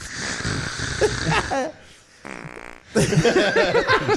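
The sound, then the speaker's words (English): A wet, sputtering fart-like noise blares, breaking off briefly and then returning in a longer, louder burst of buzzy, flapping sputters. “That does sound like a forehead fart.”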